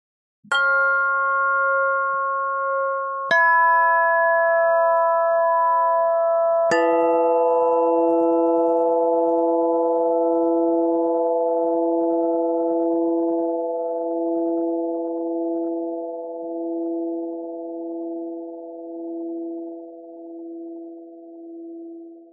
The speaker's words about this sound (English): And now, here are a few more chimes for your listening pleasure. Remember to listen with your ears and your heart. And really, you can listen with your whole body. No talking so we can hear the chimes. Okay, here they are.